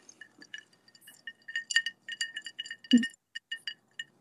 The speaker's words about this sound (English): Your ice was clinking and there was chips going on in my kitchen.